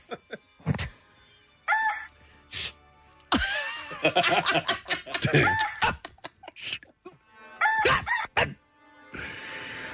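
A rooster named Magda, at a neighbor's home in western Germany, crows loudly several times, its strained, harmonic calls repeating between bursts of clucking and scratchy squawks, with brief gaps of near silence.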